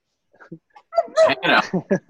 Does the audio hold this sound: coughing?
no